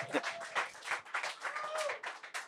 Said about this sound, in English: Yeah, don't forget the clapping.